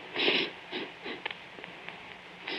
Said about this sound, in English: What are you sniffing for? Nothing. I don't smell anything. I thought I caught a sniff of high wines.